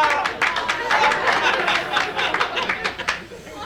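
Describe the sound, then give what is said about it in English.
A steady burst of crowd applause, dense clapping held at an even loudness for a few seconds, with a murmur of voices mixed in. “I like that applause.”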